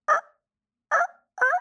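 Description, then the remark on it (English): A person imitates a gobbler turkey's gobble with three short, rattling bursts: one, then after a pause, two more close together. The calls are loud, with no talking. “And then the gobbler goes.”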